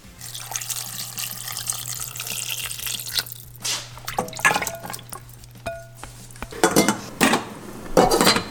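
Water hisses and sizzles as a little is poured into a hot pan of marinated mushrooms being sautéed, followed by scattered metallic clinks and scrapes of cookware over a steady low hum.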